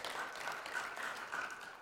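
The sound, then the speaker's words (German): A crowd applauds steadily after having learned a verse, a dense wash of many hands clapping at an even, moderate level with no voices standing out, sustained for the full couple of seconds. “Applaus, ihr habt es schon gelernt.”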